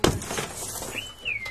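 A sudden sharp crash of car window glass shattering as someone breaks into a car, followed by a scatter of tinkling fragments and a thin, high ringing tone that slowly fades. No voices are heard.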